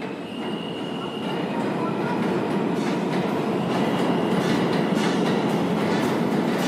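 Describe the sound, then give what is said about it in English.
A train rumbles steadily along the rails, a dense, continuous roar with faint rhythmic clatter and a thin metallic whine, heard from inside the car. “Ladies and gentlemen, the next stop on this train will be...”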